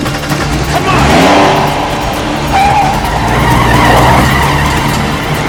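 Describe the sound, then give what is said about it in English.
Car tires skid and squeal loudly over a roaring engine, with two long screeching slides and a voice faintly in the mix, as in a car chase. “The car chase sequences where many of the credited stunt performers in the US are used, mainly as ND drivers, but the credit list has many big names,”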